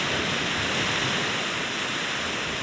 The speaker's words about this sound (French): C'est la voix, le murmure des vagues juste quand les vagues se retirent des rivages.